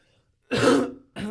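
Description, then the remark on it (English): A fairly loud throat clearing: one rough, gravelly burst followed moments later by a second shorter rasp, with silence before it and no talking. “We should get a cough button.”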